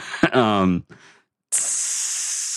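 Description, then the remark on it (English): A brief voice sounds first, then after a pause a steady, loud, bright hiss of meat sizzling in a pan starts abruptly and continues unbroken to the end. “Oh, this is like meat sizzling?”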